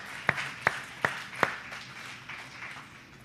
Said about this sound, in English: And would you give him a great hand clap of praise?